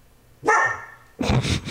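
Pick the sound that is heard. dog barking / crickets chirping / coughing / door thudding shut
dog barking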